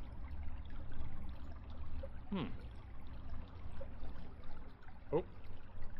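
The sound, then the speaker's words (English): Steady rushing water fills the whole stretch with a constant, even wash of noise, broken only by two brief, faint chirp-like sounds partway through. “You hear the rush of water, and no one feels anything unusual, apart from some tension.”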